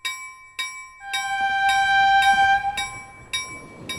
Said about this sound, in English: She makes another attempt to back out of the trip, but Molly sees her concern as just another excuse and drags her onto the train just as it leaves the station.